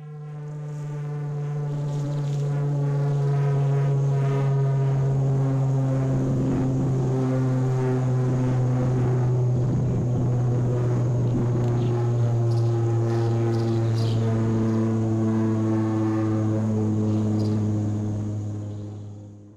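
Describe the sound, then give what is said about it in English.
A loud, steady aircraft hum drones for about twenty seconds, a deep buzzing tone layered with many harmonics that waver slightly in pitch, with no voices over it. “I want to play, you know, maybe 10 seconds or so of what this aircraft sounds like.”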